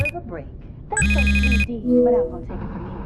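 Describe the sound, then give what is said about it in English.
A mobile phone buzzes loudly with an incoming call, a single sustained burst of about half a second with a ringing tone, followed by faint voice-like sounds and background noise. “I didn't know I fell asleep until my phone buzzed and scared the hell out of me.”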